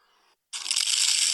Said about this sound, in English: Oh, there's someone like, with their hand look like crunching a leaf. Oh, you can't do it with your hand.